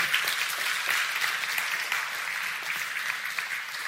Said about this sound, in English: Yeah, you can clap.